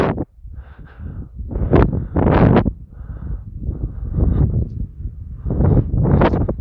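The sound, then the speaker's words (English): Gusty wind buffets the microphone with a loud, low rumble while walking by a beach entrance, swelling into several harsher rushing bursts over a few seconds, with no voices. “It's a little windy where I am. Just walking by the beach entrance.”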